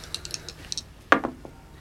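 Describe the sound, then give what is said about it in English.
A D100 and a D10 die are rolled, giving 95: a few light, rapid clicks as they rattle, then a sharp clack as they hit a hard surface, followed by two quicker, fainter bounces before they settle. No one speaks. “Can you roll a D100 and a D10?”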